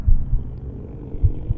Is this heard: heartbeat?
yes